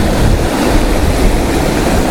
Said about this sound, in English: I've got the trees. I've got swirling water.